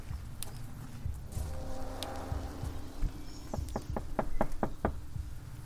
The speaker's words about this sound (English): We reach the front door, and we knock on it. Let's try.